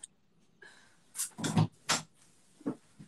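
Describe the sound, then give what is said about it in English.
A door being pushed shut, a short cluster of knocks and a muffled thud followed by a softer latch click a moment later, with no one talking. “I'm going to close my door real quick.”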